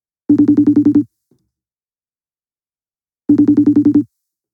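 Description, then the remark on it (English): Two loud rings on an outgoing phone call, each a buzzy, rapidly pulsing tone under a second long, separated by about two seconds of silence. No voices. “That nigga better answer his phone.”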